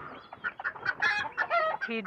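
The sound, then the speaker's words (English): A downed, injured chicken clucks in a quick, uneven run of short, throaty bursts, a dozen or so notes tumbling over each other with no voices around. “I got a down chicken.”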